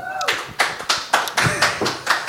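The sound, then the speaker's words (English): A short burst of hand clapping, about nine sharp, fairly loud claps in a quick, steady rhythm, with a brief trace of a voice at the very start. “We got claps.”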